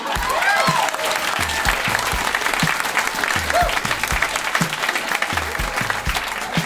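Steady audience applause, a dense wash of many hands clapping at a fairly loud, even level throughout, with a few faint cheers and voices mixed in.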